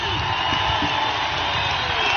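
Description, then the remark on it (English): A large stadium crowd gives Vrabel a standing ovation at a ceremony on a Tennessee Titans game night, roaring and cheering in a steady, dense wash of applause and whoops, loud throughout with no break. “So here's Vrabel amidst a standing ovation from the crowd.”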